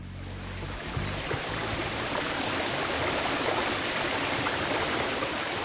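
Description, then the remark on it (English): A steady, full roar of falling water from a waterfall, with a mist of fine droplets floating from it, rushes without pause, broad and hissing, with no voices and no change in intensity throughout. “We leave you this week amid a mist, fine droplets floating from a waterfall.”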